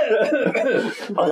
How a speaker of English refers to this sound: In between all that coughing and choking